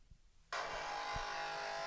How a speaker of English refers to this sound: Is that what the coffee machine sounds like? Okay. And then this is someone's coffee machine. They played it. Wait. They're turning it on. Oh my god, that's exactly it.